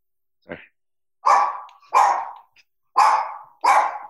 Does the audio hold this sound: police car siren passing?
no